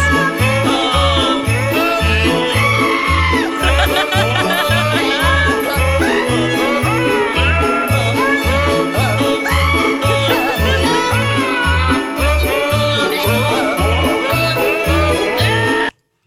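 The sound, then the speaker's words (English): Goat bleats carry the Jingle Bells melody over a bouncy, steady beat and full backing music, loud and continuous for about sixteen seconds before cutting off abruptly. “How about Jingle Bells with Goats?”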